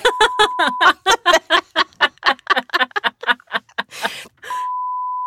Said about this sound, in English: I can't wait to beep that out and see what that sounds like.